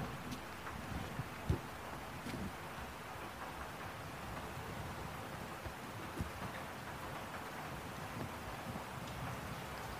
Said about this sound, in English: Did this rain really come from Amazon? And where did the sunny day go? In what ways are you different when it rains than from when the sun shines?